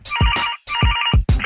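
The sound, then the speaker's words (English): A telephone rings in loud, repeated electronic bursts as a call is placed to NFL agent Peter Schaffer, two full rings and the start of a third, each a bright warbling tone with a thumping low edge, with no one talking. “I think it's time to call NFL super agent Peter Schaffer to talk NFL collective bargaining agreement.”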